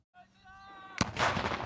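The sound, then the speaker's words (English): A steady, thin tonal whine holds for under a second, then a sudden loud artillery blast of live munitions fired by soldiers during a Swiss military exercise cracks out and rolls into a harsh, roaring rumble. No one speaks. “Soldiers rehearsed fighting, tossed grenades, and fired live munitions to showcase self-defense capabilities.”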